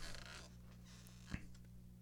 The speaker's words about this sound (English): I apologize, as this chair is entirely too squeaky and I'm going to have to get a new one. It bothers me.